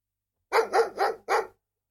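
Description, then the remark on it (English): A beagle lets out four quick, loud barks in a rapid burst, clear, with no voices around it. “Beagle.”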